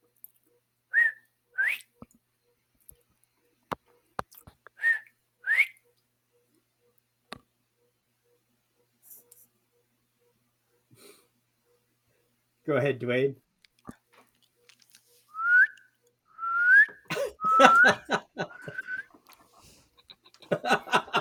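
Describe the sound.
A person whistles short rising notes in scattered bursts, with brief speech and a few clicks between them, then a livelier run of whistled chirps mixed with laughter near the end.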